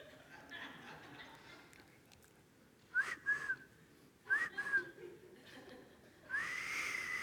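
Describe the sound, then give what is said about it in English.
A few sharp, upward-sweeping whistles like a taxi-hailing whistle, three short blasts, each with a breathy rush of air, the last trailing into a hiss. “They signaled, my dad does that great whistle, like, shh. I mean, he could call like taxi cabs, right?”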